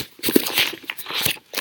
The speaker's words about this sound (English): Do you hear that? That's paper. That's the book, printed out, all ready to go, right here in my hands. I don't know how to make paper sounds, so I'm just like throwing this paper around.